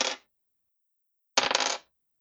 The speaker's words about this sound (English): Stop rolling dice.